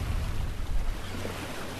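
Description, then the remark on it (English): Steady wash of waves lapping at the shoreline of Lake Taupo, the largest lake in New Zealand, with a low rumbling undertone of wind buffeting the microphone; continuous, no voices. “Well, I'm here in Lake Taupo, which is the largest lake in New Zealand, and it's absolutely colossal. It's like a sea.”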